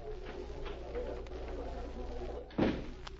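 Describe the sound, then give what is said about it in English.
A steady low room hum with faint shuffling, then a door closes with a single dull thud near the end, moderately loud. “If you'll go out that door, you'll find the telephone on your left.”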